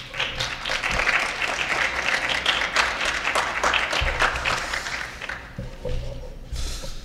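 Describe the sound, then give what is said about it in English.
An audience applauds steadily for people doing a year of service in the city of Buffalo, a dense wash of many hands clapping at an even level for several seconds before thinning out toward the end. “So please give them a rounding round of applause, not only to them, but to the service that they're doing for 1 year here in the city of Buffalo.”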